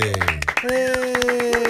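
In a studio, a man claps for himself quickly and steadily, around a dozen sharp, bright claps in under two seconds, while a sustained voiced tone hums along underneath.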